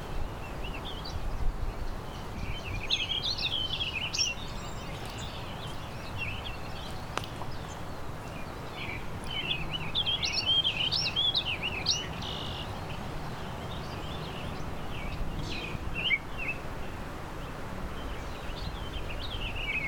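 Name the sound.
warbling vireo song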